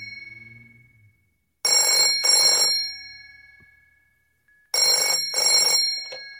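A telephone bell rings in two loud double bursts, each a pair of quick, bright jangling trills, with a pause of silence between them and no voices.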